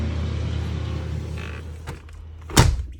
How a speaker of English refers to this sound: Give that door a nice close.